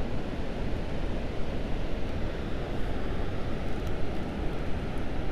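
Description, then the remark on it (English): Steady roar of ocean surf and sea foam washing onto the shore of the Oregon coast with wind buffeting the microphone, a continuous dense rush that swells slightly without pause; no voices. “There's some more sea foam moving our way.”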